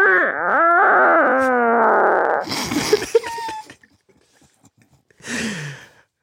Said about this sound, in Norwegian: Skal vi gå videre da til innsender fis nummer 2?